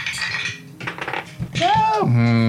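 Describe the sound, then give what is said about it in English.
Dice clatter and skitter across a surface and fall to the floor in a quick burst of rattling clicks, followed by loud vocal exclamations from people. “Floor dice, hang on.”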